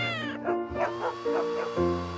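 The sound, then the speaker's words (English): Mr. Minsky's all-night cat meows several times in quick succession, its calls rising and falling in pitch, clear over a steady sustained background tone. “Nelly, the downstairs dog, is barking at Mr. Minsky's all-night cat.”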